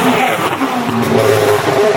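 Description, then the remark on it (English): A WRC rally car driven by Danny Sordo roars loudly past at high speed during a rally event in Catalonia, its pitch shifting as it accelerates by, with a steady rumble and whine filling the short moment. “Danny Sordo just passed us there.”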